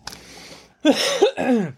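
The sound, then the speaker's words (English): A person coughs after swallowing down the wrong pipe: a raspy, breathy hack followed by two loud, strained, voiced coughs in quick succession, with no talking. “Swallowed down the wrong tube.”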